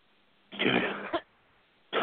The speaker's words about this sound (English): You got the same thing I got, don't you? I tell you, I've been coughing all day, I didn't realize when I got on the radio program it was going to be so difficult, or I would have canceled the program.